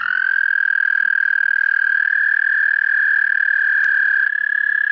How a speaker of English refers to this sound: Then what frogs do we hear after that? Southern leopard frogs would be next in line.